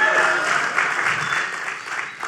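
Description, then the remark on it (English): Steady audience applause at a church service welcoming a special guest speaker, the student ministry director: many hands clapping at once in a dense, even wash of sound that holds strong for a couple of seconds and tapers slightly at the end. “They didn't applause for me the last time.”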